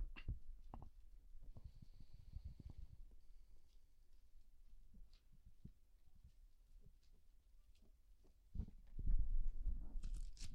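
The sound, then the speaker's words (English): Scattered soft rustles and flicks of Bible pages being turned by several people looking up Luke chapter 9, with no talking, swelling into a louder, busier rustle near the end. “I hear people turning the pages of their Bible.”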